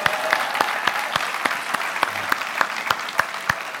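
An audience claps steadily for a man's 76th birthday, with sharp individual claps standing out over a dense, continuous wash of applause that stays fairly even in loudness throughout.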